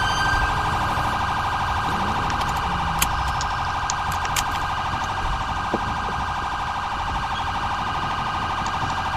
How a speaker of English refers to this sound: I guess I can siren check it now.